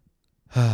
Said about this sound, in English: Fuck, I'm already that tired. I'm already yawning.